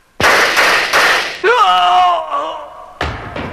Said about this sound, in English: A KOS engineer has just been shot to death here in the big KOS newsroom.